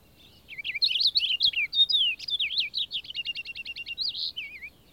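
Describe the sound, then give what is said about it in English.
A songbird sings in the woods a rapid, continuous song of high, varied warbling notes, shifting into a quick repeated series near the end, with no voices present. “His song approaches an ecstasy, and, with the exception of the winter wrens, is the most rapid and copious strain to be heard in these woods.”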